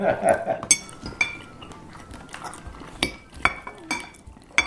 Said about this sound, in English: Although listening to that tape, dude, doesn't that sound gross? I feel like we're eating that horse or something. I gotta turn that off.